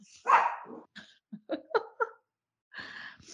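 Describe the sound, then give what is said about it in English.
Several dogs bark in quick, uneven bursts, a loud opening bark followed by a flurry of sharp yips and barks, then another after a short pause. “Okay, now these dogs are lit.”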